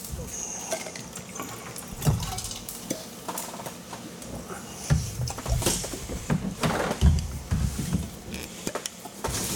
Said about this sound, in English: I can dump some water in one of these. Dump a little water in there and wash it out.